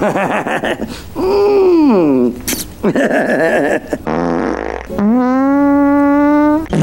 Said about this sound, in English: Sorry, I farted.